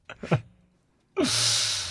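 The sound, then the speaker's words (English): A sneeze: two or three quick, catching inhales, a brief pause, then a loud, hissing burst of breath that holds for most of a second before fading. “God bless you”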